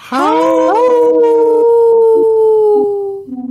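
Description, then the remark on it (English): People imitate a wolf howl as a staple Howling for Wolves segment of a Native Roots Radio show: a single long, loud howl that rises quickly, then holds a steady pitch for about three seconds before trailing off, with faint overlapping voices behind it. “Howl! Ooh, good one. Good one. Good one, everyone.”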